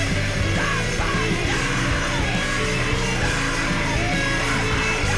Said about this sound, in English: This is kind of grungy. It was pretty cool. There's a little scream in here.